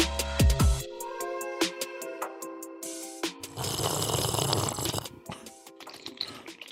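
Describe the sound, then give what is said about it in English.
Wet slurping, made in place of opening a can or bottle: a few short sucking bursts, then a longer noisy draw of liquid lasting over a second and trailing into faint gurgles. Moderately loud, with no talking. “I didn't have a can or a bottle, so we went with a slurp this time.”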